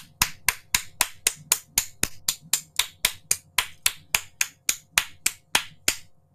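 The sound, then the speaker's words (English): Applause given as a round of applause for Afrocentric scholars, in the form of a steady, evenly paced run of about twenty sharp, crisp claps, each one distinct rather than a dense crowd roar, with no voices. “we really need to take a moment and give a round of applause for these melanated Afrocentric scholars.”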